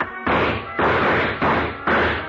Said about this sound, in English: I knocked over a chair to give him something to shoot at.